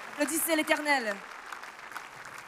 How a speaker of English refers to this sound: Shall we put our hands together and clap for the Lord? Dale un aplauso al Señor.